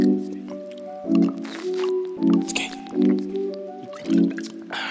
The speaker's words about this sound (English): sip that water real quick.